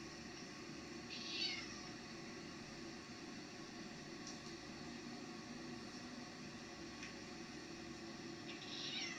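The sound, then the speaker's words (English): A cat, filmed just minutes before midnight while looking at a door, meows twice, once early and once at the very end, both faint over a steady background hiss, with quiet stretches between the calls. “And we have a little video of this cat again. Doing the same thing. Looking at the door. Looking around. Meowing.”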